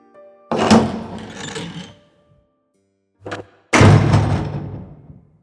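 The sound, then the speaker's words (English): A heavy door thuds open with a deep, booming impact, followed by a short knock and a second loud, resonant thump that rumbles away. No voices are heard. “Each girl had a role to play, and they just needed to wait for the door to”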